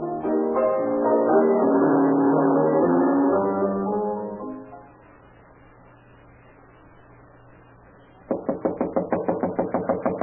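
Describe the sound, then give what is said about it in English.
A rapid, loud series of about ten knocks on a door comes near the end, as someone demands the door be opened, following a quiet humming stretch and an earlier sustained tonal passage. “Get up and open this door.”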